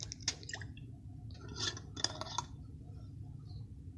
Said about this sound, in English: I'm taking a sip of this moonshine.